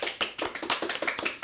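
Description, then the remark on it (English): A single person claps weakly when asked for applause after a list of upcoming films is read out, a quick run of about eight soft, uneven hand claps over a second and a half, sparse with no crowd behind them. “He clapped, but god damn, that was not good.”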